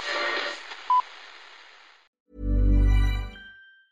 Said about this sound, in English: Whose phone is that? That's the second time it's gone off.